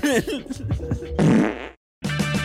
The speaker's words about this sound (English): Just kidding. I used another fart.